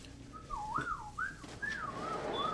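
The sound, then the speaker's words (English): A person whistles a wavering, sliding tune in several connected phrases, the pitch rising and falling smoothly, clear with a faint steady background hiss. “Okay, since you asked that, I'm going to give it back to you in the form of whistle.”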